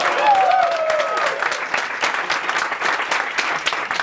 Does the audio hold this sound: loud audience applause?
yes